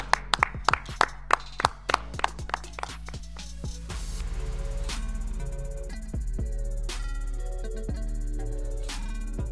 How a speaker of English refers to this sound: Well done. Clap it up.